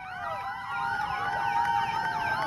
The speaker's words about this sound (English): That's great. So they just turned all the sirens on to celebrate everything.